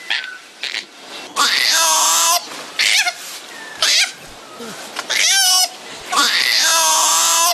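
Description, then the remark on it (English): Koalas mating: a series of loud, shrill screaming wails comes in repeated bursts about a second long, harsh, with short pauses between them and no talking. “Yeah, let's see what it sounds like once they start doing it.”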